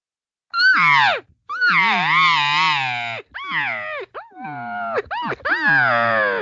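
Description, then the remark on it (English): An imitated cow elk demanding call, the tone a cow uses to tell another elk, cow or bull, to come over now: a string of about five or six loud, nasal, whining mews that bend up and down in pitch, with brief gaps between them and no talking. “And this is a demanding tone that a cow will use for whatever elk she's responding to or talking to, communicating, cow or bull, to come over and come over here now.”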